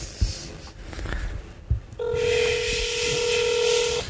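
After a couple of seconds of rustling and soft clicks, a steady electronic telephone keypad tone comes in and holds to the end, fairly loud, with no talking, as someone phones a taco restaurant.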